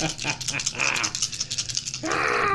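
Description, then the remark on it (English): Movement dice for a game clatter and rattle in a cup or hand, a dense run of bright clicking impacts that keeps shaking steadily, with a faint voice murmuring underneath. “Give me movement dice while you rule check so I can keep playing this game.”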